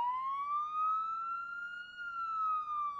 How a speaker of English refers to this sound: And every time the garage door opens, it's an event. It's coming! Oh, it's coming our way. The firefighters don't usually turn the siren on until they get down the street a bit.